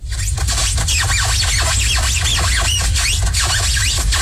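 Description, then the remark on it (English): Styrofoam squeaking in a steady run of high, rubbing squeals that rise and fall in quick repeated strokes, loud and continuous for about four seconds over a low rumbling undertone, with no talking. “We had Gabby text in this morning saying styrofoam squeaking.”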